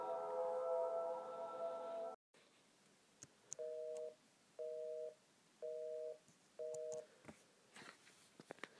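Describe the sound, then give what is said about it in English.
A phone line hums with a steady tone while dialing 911, cuts off, and then a busy signal beeps four times in an even on-off rhythm, each beep about half a second, clear. “I grab my phone and sprint up the stairs as fast as I've ever ran in my life. I hide in my closet and dial 911.”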